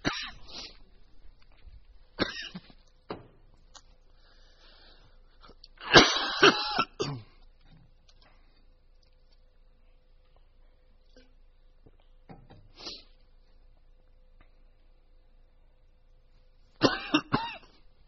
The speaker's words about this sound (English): I'm getting over a cold. And once I start coughing, I can't stop.